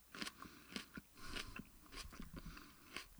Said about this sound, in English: So, here we go. First bite. Okay. Haven't swallowed anything yet. Took my first bite. Just like I would do with an apple.